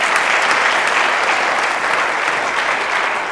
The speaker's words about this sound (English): Let's give him a hand clap for you. Come on, let's give it up.